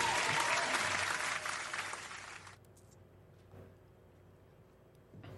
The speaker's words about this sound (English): We'll give it a applause for that.